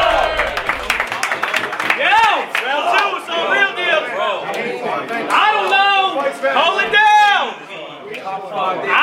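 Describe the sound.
A live crowd cheers and yells loudly for about nine seconds after round 1 of a battle, many overlapping voices whooping and hollering in a steady roar with faint clapping mixed in.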